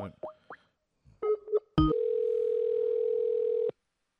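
phone line tone

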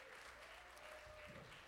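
audience applauding

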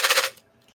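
ice rattling

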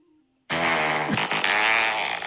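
fart sound effect

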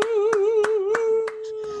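applause

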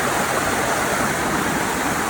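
flowing stream water

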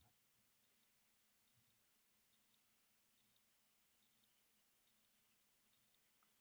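crickets chirping sound effect

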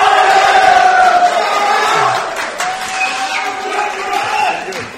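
crowd cheering

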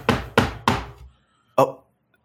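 knocking on a door

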